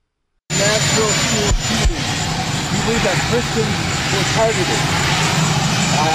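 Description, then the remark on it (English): A loud, steady engine roar, like an aircraft engine, drones continuously throughout, with a reporter questioning Joe Biden faintly underneath the noise, in a video captured by the New York Post. “I'm going to play this video here, and you may not be able to understand what's being said with the engine in the background, but I'll translate it for you here in just a moment.”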